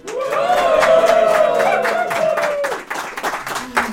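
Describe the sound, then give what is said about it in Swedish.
A live audience at Kover och Melin AB on Södermalm in Stockholm cheers loudly for about three seconds, voices whooping together over scattered clapping, then the roar fades into a few remaining claps and murmurs. “Kan vi få höra publiken?”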